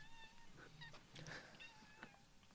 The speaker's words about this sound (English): her cat just meowed so loud and so angrily. I'm pretty sure you're going to hear him. I love it. I was lifting him from the desk to put him onto the ground. And I'm sure you'll hear it.